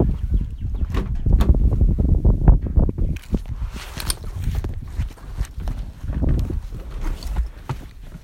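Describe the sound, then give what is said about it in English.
Steady footsteps crunch along at a brisk walking pace as a person walks to their car at the start of a morning commute. The steps are fairly loud, with a faint hiss of outdoor background noise and no talking. “Walking to my car.”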